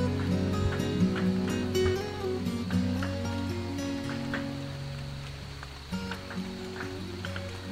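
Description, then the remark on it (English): Gentle summer rain patters steadily with scattered, distinct drops, layered over a sustained low humming tone. Moderately loud and continuous, with no voices present. “Unless you mix a gentle summer rain with some laughs and an unexpected lover.”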